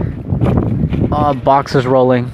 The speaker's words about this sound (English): Shit, it's really windy. And it's really dry. And I'm sitting by the side of a dirt road.